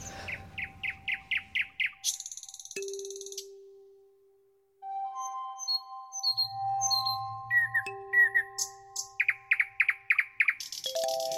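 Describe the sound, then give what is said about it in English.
A nightingale sings alone, mixing rapid runs of repeated chirps, long pure whistled notes and buzzy trills in a varied, rich sequence with a short pause midway. “No, I have heard a nightingale at some point, but they're quite difficult to spot, you know, because they're quite tiny birds and they're always very, very high up in trees.”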